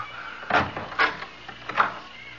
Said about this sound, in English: No, no, no. Not just this minute, please. Not till I open the door to the closet.